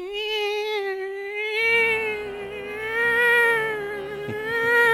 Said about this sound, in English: And, you know, it's very effective in just winding you up. And that's kind of what it sounds like, something winding up and spinning.